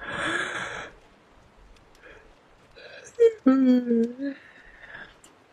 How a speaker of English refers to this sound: This is how tired we are now, thought Roger and yawned.